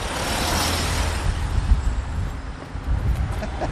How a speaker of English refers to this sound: Minivan. Yeah. That car coming.